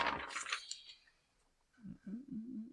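A short burst of bright, rattling clatter of dice being rolled on a hard surface, scoring seven successes, that fades within about half a second; a voice begins speaking shortly afterward.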